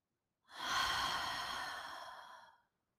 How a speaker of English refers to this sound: Taking another inhale, breathing in deeply. And exhale.